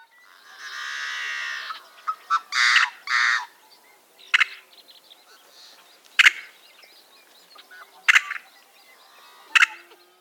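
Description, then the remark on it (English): A yellow-headed blackbird gives a long, harsh buzzing rasp followed by two grating bursts, then several sharp, isolated metallic chips spaced a couple of seconds apart, fairly loud with no talking. “So one more time, here is the yellow-headed blackbird.”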